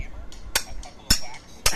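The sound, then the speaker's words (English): A hatchet chops into a hip bone three times in a steady rhythm, each blow a sharp, cracking thud with a brief ringing tail, separated by about half a second of quiet. “They're using a hatch. The hammer's not as psycho. You get the hip bone, right?”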